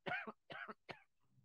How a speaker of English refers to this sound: It comes too fast for me to hit the mute button to mute out my coughing, so I'll just have to edit those out again.